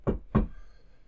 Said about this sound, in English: All right, all three of you, you're at home by yourself, and a guy knocks on your door.